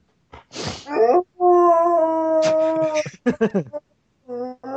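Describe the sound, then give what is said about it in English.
A dog howls inside a house: a breathy yelp, then one long, steady, loud howl, followed by a run of short choppy yips and a final brief howl. “What's it like having a wolf inside of your house?”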